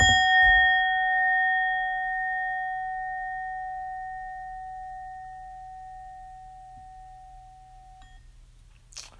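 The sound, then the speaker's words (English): A single bell is struck once, loud, and its clear metallic tone rings on, slowly fading over several seconds with no voices around it. “Ring the bell to that.”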